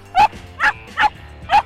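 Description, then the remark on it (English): A Karelian Bear Dog barks four times in quick, slightly uneven succession, each bark short, sharp and loud, with a faint background hum between them. “The Karelian Bear Dog.”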